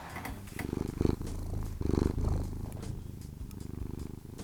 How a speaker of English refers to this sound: Wow. He's really peaking the microphone with his purrs there.